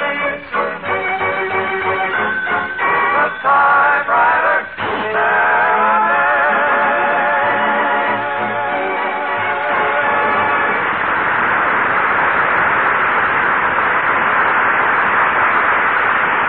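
Typewriter typing in quick bursts of sharp clicks mixed with ringing tones, giving way after about ten seconds to a loud, steady rushing hiss. No one speaks.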